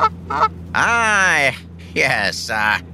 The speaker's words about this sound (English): No. That's just a goose.